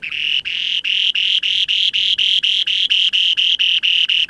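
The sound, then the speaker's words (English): A spoon-billed sandpiper's song, recorded in the far northeast of Russia: a long, steady run of buzzy, high-pitched trilled phrases, each cut short by a brief gap, repeating evenly and loudly with no voices present. “That's the song of one of the rarest birds on Earth, the spoon-billed sandpiper.”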